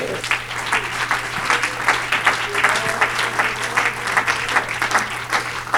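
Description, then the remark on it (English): An audience at a church worship service claps hands after a prayer in a steady, dense burst of applause lasting several seconds, many overlapping claps forming a continuous crackling wash, with a low hum underneath. “Clap your hands.”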